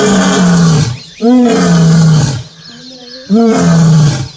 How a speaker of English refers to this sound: You know what that is? That's a lion.